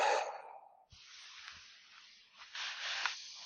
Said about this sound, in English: What we're going to do is we're going to take three deep breaths. So dig nasal breaths, diaphragmatic breathing all the way down. So all the way in and out.